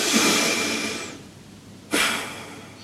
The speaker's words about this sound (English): I like to do it through my nose, so I close my lips, because when you breathe in and out through your nose, it has additional relaxation qualities to it. So deep breath in through the nose and then release breath.